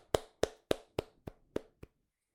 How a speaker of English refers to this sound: And what does he get? A hearty round of applause.